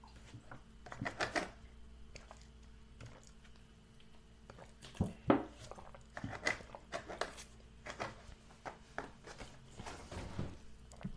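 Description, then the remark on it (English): Wet mouth sounds of someone drinking water: irregular sips, gulps and swallows with small liquid squishes over a faint steady hum, and no talking. “Gotta get a drink of water real quick before I move on to these last two games.”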